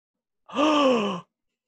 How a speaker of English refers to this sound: Gasp. I guess.